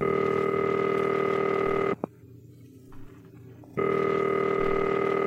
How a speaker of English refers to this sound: Oh, she's making a phone call. Who's she calling?